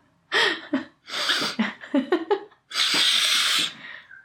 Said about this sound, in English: Ooh, that made my ears hurt. You ever sniff so hard your ears hurt?